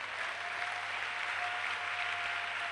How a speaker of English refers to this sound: Your hand clap, I don't like it at all.